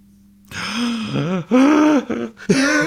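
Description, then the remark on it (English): A person lets out a series of exaggerated, drawn-out gasps, voiced and wavering in pitch, loud, with short breaks between three or four bursts and no words spoken. “I can't gasp anymore.”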